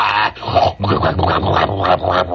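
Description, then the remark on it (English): A voice imitates a subway train rattling north, producing a continuous rough, growling rumble with rhythmic pulses, loud, lasting a couple of seconds. “That's the subway sound.”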